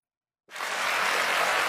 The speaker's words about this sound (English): Damn, the claps sound crazy.